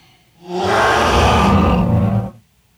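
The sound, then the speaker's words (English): A single loud, growling dragon roar sound effect, rising quickly, holding steady with a harsh rumbling texture for almost two seconds, then cutting off into silence. No voices. “Just so you know, I can't hear the Dragon Roar today, so if I end up talking through it, sorry.”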